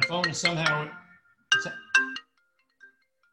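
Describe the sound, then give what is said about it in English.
A phone ringtone, playing through a computer the phone is connected to, chimes in short melodic bursts: a rich, tuneful phrase, a pause, then two quicker tone blips before it cuts off, clear with no talking. “My phone is somehow attached to my computer, which I've never been able to figure out.”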